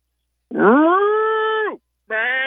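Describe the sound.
Someone imitates a horse whinny with their voice: one long, loud call that rises in pitch and then holds steady, followed after a short pause by a second call.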